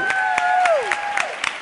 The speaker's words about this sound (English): And again, one more round of applause for Carly Johnstone.